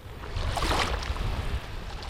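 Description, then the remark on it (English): Gentle waves of floodwater lap and slosh over thousands of acres of flooded farmland in Corcoran, Kings County, in the Central Valley, in a soft, continuous wash, with a steady low rumble underneath and brief brighter splashes rising and fading. “Instead, beneath the waves gently lapping in front of him are thousands of acres of farmland.”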